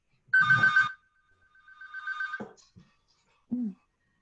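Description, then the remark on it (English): A phone ringtone from an incoming call chimes in a short electronic burst, followed by a softer warbling tone and a brief final blip, clear with no talking over it. “Somebody has a phone call coming in.”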